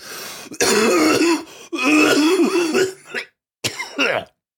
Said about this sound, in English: Oh, that wasn't performative. I'm sorry. I coughed. I'm trying to. If that's not performative, you got to go to a doctor immediately.